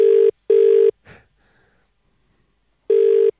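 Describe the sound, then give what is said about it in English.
A phone's ringback tone purrs in a loud, steady double burst, falls silent except for a faint breath, then starts another double ring, heard clearly as an outgoing call waits to connect. “Wonder if his phone's been stolen. No, he's got it.”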